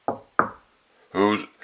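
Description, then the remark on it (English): A voice imitates Little Red Riding Hood knocking at the grandmother's door: two sharp knocks spaced about a third of a second apart, followed by a brief voiced sound from a person. “He then shut the door and went into the grandmother's bed, expecting Little Red Riding Hood, who came some time afterward and knocked at the door.”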